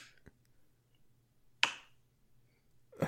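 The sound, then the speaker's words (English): A single basketball dribble: one sharp thud-and-slap of a ball hitting the floor, standing alone in near silence, with a faint tap before it and another brief knock at the end. “A single dribble. That's a great sound effect.”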